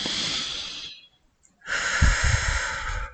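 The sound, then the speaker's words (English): A deep breath: a long airy inhale, a short pause of silence, then a fuller, rougher exhale pushed out through the mouth. No one speaks. “So let's take a deep breath.”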